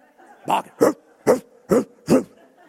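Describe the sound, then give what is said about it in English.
An Alsatian at a house barks five times as someone is about to knock on the door, in a steady, evenly spaced rhythm, each bark deep and full, with a low background murmur between barks. “Following week, about to knock that door, I could hear this Alsatian.”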